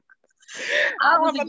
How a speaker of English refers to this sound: I want to say God bless you.